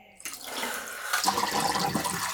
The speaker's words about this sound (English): And coincidentally, it also ends our developing. So let's pour out.